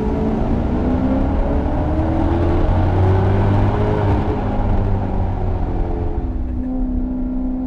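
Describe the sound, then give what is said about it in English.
A car engine revs loudly, a deep, continuous rumble whose pitch rises and settles over several seconds, with a steady whir of road and wind noise underneath. “I can't lie. This is a nice sounding car.”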